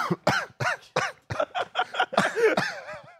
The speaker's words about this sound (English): Coughs right into the mic at the show end. Well, I didn't want to cough towards you as I'm shaking your hand.